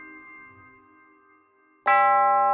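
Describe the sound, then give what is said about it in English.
A small silver bell attached to the lintel above the front door of a small storefront office rings as the door is opened: a soft lingering chime fades out, then a sudden bright strike rings out loudly and keeps sustaining. “to the front door of the small storefront office to see who had opened it and caused the small silver bell attached to the lintel to ring.”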